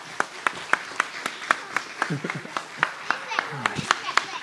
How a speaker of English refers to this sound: Give these kids a round of applause right here.